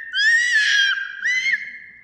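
A loud, high-pitched human scream sustained for about a second, followed by a shorter second scream after a brief pause, piercing with no talking.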